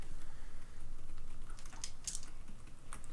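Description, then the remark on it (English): Small hard objects clatter and click together in quick, irregular bursts, like a hand sifting through a pound of dice in search of eight-sided dice, with no one speaking. “Oh, I literally don't own enough D8s? Come on, there's a pound of dice. I have to have enough D8s.”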